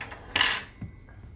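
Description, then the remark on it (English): A big knife slices a chocolate hazelnut cake into wedges with a brief scraping swish against the plate, followed by a soft dull tap. No one speaks. “So I just got my big old knife. I'm going to cut this into wedges.”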